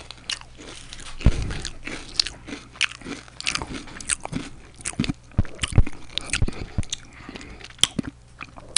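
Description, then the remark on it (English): Loud crunching of potato chips, with a steady run of sharp, crackly bites and chewing over about nine seconds and no talking. “Hey, nigga, this nigga made a potato chip sound, nigga.”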